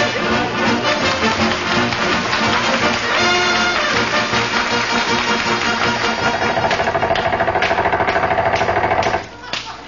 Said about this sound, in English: we'll have to use air hammers and chop him loose.